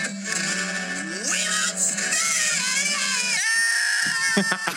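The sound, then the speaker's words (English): Several men scream together in a loud, continuous burst, their strained voices overlapping and swooping up and down in pitch for nearly five seconds, with a slightly tinny, played-back quality. “It's like a goat. All in the family. Guys screaming.”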